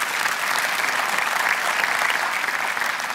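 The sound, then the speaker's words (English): An audience at a church service applauds the band director steadily, a dense wash of many hands clapping at a constant, fairly loud level with no pauses or voices breaking through. “You got a bigger applause the first service.”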